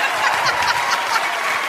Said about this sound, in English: an historic moment took place right here at the CBC Broadcast Center in Toronto. Something that had people cheering loudly and proudly. Have a listen to this trio of cheers and see if you can figure out the news story.